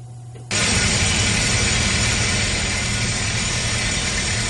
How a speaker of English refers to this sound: So we looked it up and... This is what a rock drill actually sounds like.